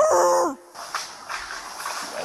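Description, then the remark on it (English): A person gives a short, loud, dog-like bark or yelp, a human voice imitating a dog, followed by a couple of seconds of rough splashing, rustling noise. “Now that's a human. That is not actually... That's a human. A dog.”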